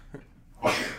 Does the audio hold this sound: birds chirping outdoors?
no